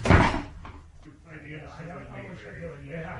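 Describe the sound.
A door swings shut with a single heavy thud right at the start, then its echo fades as a voice begins talking quietly in the background.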